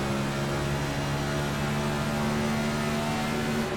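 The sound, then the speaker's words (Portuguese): A steady, droning NASCAR Next Gen race car engine in a racing simulator at Dover, with strong low harmonic tones, holding a constant pitch at high revs, loud and continuous throughout with no talking. “Este será mais ou menos o POV de um piloto, ainda que virtual, aqui em Dover, ao volante do Next Gen. Isto que vocês estão a ver são carros pilotados por seres humanos, cada um das suas casas.”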